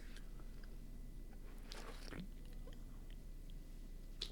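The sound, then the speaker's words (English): A quiet sip of a thick vegetable smoothie shake containing onions: a short wet slurp and mouth sounds around the middle, with faint swallowing and lip noises against a steady low background hum. “As soon as you came in here, you gave me one of these guys, and I'm going to have a little sip now.”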